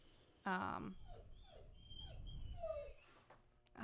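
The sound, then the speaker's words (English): A dog named Jack, locked out, whimpers: one sharp yelp, then a string of thin, high whines that slide downward, repeating unevenly over a few seconds against faint background noise. “They locked you out, Jack.”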